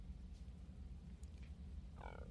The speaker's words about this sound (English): Burp. Excuse me.